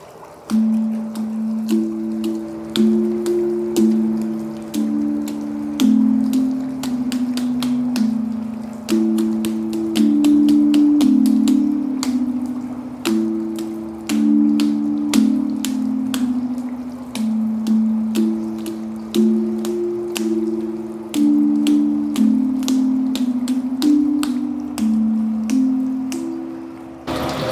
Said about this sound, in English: And so now my approach was to give water a voice, to make it possible to hear water. And so this instrument here is a hydraulophone. It makes sound from water.